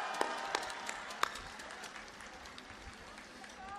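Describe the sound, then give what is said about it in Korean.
A large crowd at a political rally in Busan, South Korea, claps steadily in a dense, sustained wash of applause encouraging party leader Song Young-gil to recover from his ankle injury, with a few sharper individual claps popping out near the start and a crowd murmur underneath. “우리 송영길 대표님 전에도 발목 다쳐가지고 발목 투혼 선거운동 하셨는데 빨리 회복돼서 우리 복귀해달라고 격려 박수 한번 부탁드립니다.”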